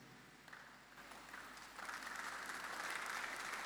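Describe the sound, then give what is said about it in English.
A crowd applauding, the clapping starting moderately and swelling louder and denser over a few seconds into steady, sustained applause with no voices over it. “If I don't ask you to clap and you are clapping, you better clap well.”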